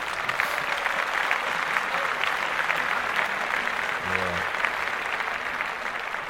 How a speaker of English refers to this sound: He's recovering. He made it through. We want to clap that up.